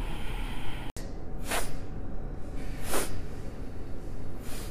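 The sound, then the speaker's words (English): Three short, sharp nasal sniffs during a breathing exercise, evenly spaced about a second and a half apart, then a slow exhale, over a steady hiss of background noise, with no talking. “So it's like a sniff, then another sniff, then a third sniff, and then a slow exhale.”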